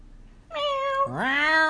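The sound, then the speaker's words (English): A person's voice imitates a cat meowing twice in a row: a steady, bright meow, then a second one that swoops upward. Fairly loud, with no other talking. “Oh, cats. Meow. Meow.”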